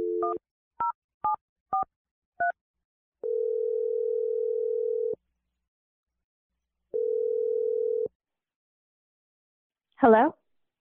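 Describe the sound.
A handful of quick touch-tone keypad beeps as a girlfriend's number is dialed, then two long, steady ringback tones separated by a pause, ending with a brief voice picking up the line.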